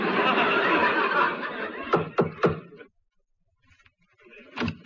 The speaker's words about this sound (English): I'll knock on the door.